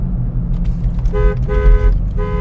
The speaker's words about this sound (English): Oh, sorry, I was honking at Kai and his friend biking to school.